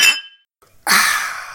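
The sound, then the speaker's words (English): Glasses clink together in a toast to John Romita, twice: a short bright chime, a brief pause, then a louder clink whose high ringing tone hangs on and slowly fades. “Cheers. And we cheers you.”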